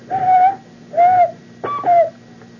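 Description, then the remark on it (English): A series of four short finger whistles, each a clear, hooting tone slightly rising then falling, sounding somewhat owl-like, loud with brief pauses between, no talking. “And there's no way to fake a whistle. I can do this.”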